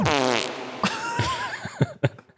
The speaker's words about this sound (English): Did you add that fart or is that on there already? That's such a good fart. The button's called rewind into fart.